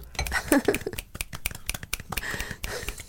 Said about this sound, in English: ASMR applause.